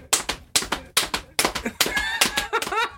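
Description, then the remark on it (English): A person imitates a horse with a steady run of sharp tongue clicks like clopping hooves, then a high, wavering whinny-like trill that ends the sequence. “Holy shit, I know you can make horse noise. That's a pretty good horse noise.”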